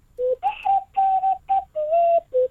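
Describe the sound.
Someone whistles the tune of a song for others to guess, a short melody of about seven clear, steady notes with brief gaps, rising and falling in pitch. The whistling is moderately loud and there is no talking.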